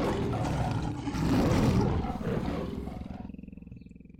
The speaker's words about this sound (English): Let's roar together as a lioness pride, starting here.